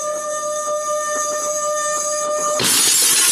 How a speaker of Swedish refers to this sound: Sätter jag glasen nära varandra och sen gnider jag på det andra glaset.